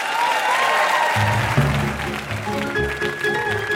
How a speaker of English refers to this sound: Huge round of applause for these two contestants.